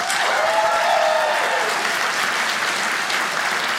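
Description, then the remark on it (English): An audience at a comedy show applauds in a poll by applause, with those under 50 clapping: a dense wash of clapping that stays loud throughout before easing slightly toward the end, with a few faint cheers mixed in at the start. “Applaud if you're under 50.”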